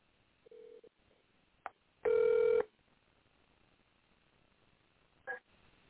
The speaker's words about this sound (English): So, since I did this kind of backwards, I'm just going to start calling people. So, I want to know if she going to answer her phone.